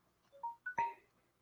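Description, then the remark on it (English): A timer goes off with a quick run of electronic beeps, three or four short tonal notes stepping up in pitch and ending on a louder, brighter chime. No one speaks. “Hold on, that's my timer.”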